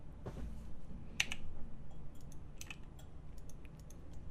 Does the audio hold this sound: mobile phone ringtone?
no